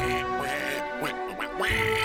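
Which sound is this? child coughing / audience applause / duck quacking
duck quacking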